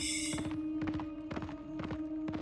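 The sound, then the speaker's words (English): The hooves of an outrider's rotting horse pound in a rapid, rolling gallop alongside a marching column at first daylight, the clustered beats repeating every half second or so, loud over a steady low droning hum. “His rotting horse makes no noise other than the pounding of hooves, but slows quickly to a trot, and then a stop.”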